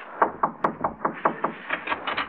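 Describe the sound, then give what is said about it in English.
Rapid, steady knocking on a door, about a dozen firm raps in a quick even rhythm lasting a couple of seconds, with no voices. “No one's home. Knock again.”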